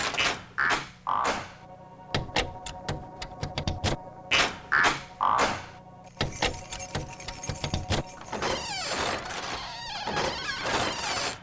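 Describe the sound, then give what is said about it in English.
Keys jingle and rattle as latchkeys turn in door locks as grown-ups arrive home from work at the dinner hour, producing a string of sharp metallic clicks and clacks that come in irregular bursts, with no voices. “Time for the turning sound of latchkeys to echo throughout the land as grown-ups arrive home from work.”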